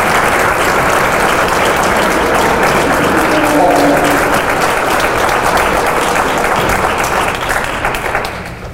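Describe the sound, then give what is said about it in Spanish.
Sustained applause from an audience, a dense, steady wash of many hands clapping at full loudness for several seconds before tapering slightly at the end; faint voices mingle underneath. “Yo no quiero robar su aplauso.”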